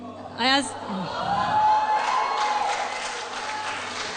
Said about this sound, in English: Le damos un fuerte aplauso a Jesús. A big clap to the Lord. Fuerte.